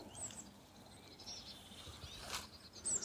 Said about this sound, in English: Still very much light, but also very much the end of the day is being heralded by the birds